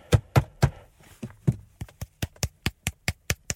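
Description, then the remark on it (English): Sharp taps made close to the microphone to imitate hand clapping: a few heavy, thumpy hits, then a steady, quickening run of about ten crisp claps, with no voices. “hang on, I'll put that a bit closer so it sounds like I'm clapping.”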